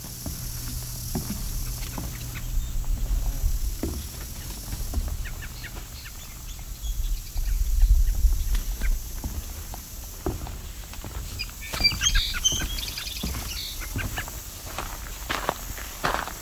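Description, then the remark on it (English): Thin, high-pitched cedar waxwing calls come in briefly partway through, fairly faint, over the crunch of footsteps and rustling. No one speaks. “Here goes the cedar waxwing.”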